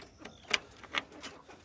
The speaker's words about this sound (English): Okay, here goes. I don't know how well my phone picks any of this up. This will be an interesting experiment. They're all clucking and fluttering around. Let me go ahead and open their little door.